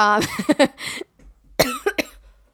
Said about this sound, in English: and then she coughs at the most inconvenient times.